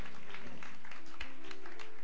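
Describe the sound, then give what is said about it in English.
An audience gives the Lord a hand clap of praise, clapping in a steady, dense wash of applause, with a faint sustained musical tone and indistinct voices underneath. “Let's give the Lord a hand clap of praise.”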